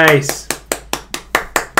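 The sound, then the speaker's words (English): A short burst of voice, then about eight sharp hand claps in a quick, steady rhythm, each a crisp, fairly loud slap with a brief decay. “I have to clap that one.”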